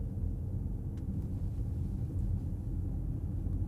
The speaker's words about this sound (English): You know what? Let me turn off propulsion sound just so you guys get a good idea of like how genuinely quiet the car is. So let me just be quiet for a moment.